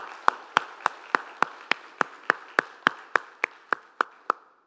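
Steady rhythmic clapping as an audience applauds the fathers present, about fifteen sharp, evenly spaced claps over a soft wash of applause that fades out at the end. No one speaks.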